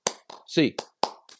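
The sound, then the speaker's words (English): Hand claps of an '8 clap' cheer for UCLA Bruins fans: five sharp claps in an uneven rhythm, crisp and fairly loud, with a short voiced shout slipping in between the second and third claps. “get your hands up, Bruins fans. 8 clap time.”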